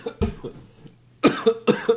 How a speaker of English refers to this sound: Making me cough.